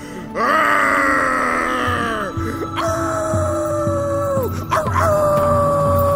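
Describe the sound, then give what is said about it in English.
A dog named Sirius howls at the sunset in three long, drawn-out wails, each holding a wavering high pitch before sliding down, loud, with only brief breaths between them. “Ether, Sirius is howling at the sunset.”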